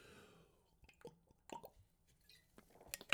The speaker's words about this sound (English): So strap in as I take another little sip of water here. Not Pepsi Max, because I'm professional. Take a sip of water.